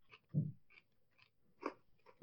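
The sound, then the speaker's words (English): Crunchy chewing of a caramel popcorn snack without nuts: a few crisp, separate bites and crunches with brief quiet gaps between them, ending on a louder crunch. No talking. “But Crunch and Munch, to me, has always been superior to Cracker Jack.”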